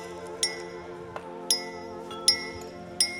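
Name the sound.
champagne glasses clinking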